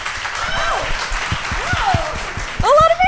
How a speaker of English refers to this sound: Yes, you guys, let's give it up once more for the movie Click. Yeah. Okay, now I just want you to clap exclusively if you have seen this movie.